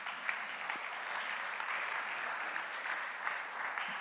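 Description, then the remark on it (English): A church audience claps steadily for several seconds after a Bible reading, a dense, even wash of many hands applauding at moderate volume with no voices standing out. “Round of applause, thank you.”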